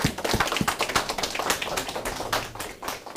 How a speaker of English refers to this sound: Clap hands for the Lord Jesus Christ.